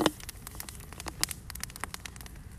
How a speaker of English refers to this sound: Something is sizzling.